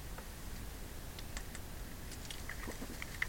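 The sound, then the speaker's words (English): Someone quietly sips a Dr. Pepper Zero: soft, scattered wet mouth clicks and small gulping ticks over a low hiss, no talking, ending with a slightly louder click. “In fact, I'm going to take a sip.”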